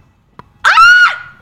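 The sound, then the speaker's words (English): A woman lets out a single sharp, high-pitched scream of surprise, loud, rising quickly and trailing off after about half a second, with no other voices. “Sorry, I was screaming.”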